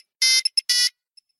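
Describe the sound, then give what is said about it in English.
A loud electronic phone ringtone chirps in a quick pattern: a long tone, two short blips, then another long tone, with a faint beep trailing after. “big ringtone, you get me?”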